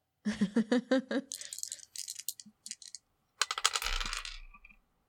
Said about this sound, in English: All right, roll it again. I don't trust you anymore. I don't trust this. I'm gonna roll. Come on. Come on, dice. You're the whole new set.